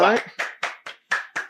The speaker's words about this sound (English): I'm going to clap. Don't you clap. You're not here yet. You haven't earned the right yet.